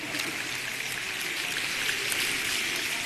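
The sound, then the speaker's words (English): Many fingers snapping at once from an audience asked to snap exactly 50 times, blurring into a steady, dense crackle that sounds almost like rainfall, bright and even throughout, with no voices. “I want you to snap your fingers exactly 50 times or count backwards from 100 by 7”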